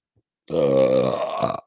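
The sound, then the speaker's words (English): A single loud, drawn-out burp lasting about a second, deep and croaky with a rough, rattling finish, with no talking around it. “Burp.”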